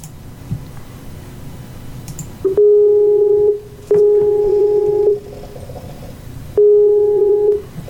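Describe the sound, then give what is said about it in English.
Skype call ringing tones: three loud, steady electronic beeps, each lasting about a second with short gaps between them, over a faint low background hum. “Let's phone Jick, shall we?”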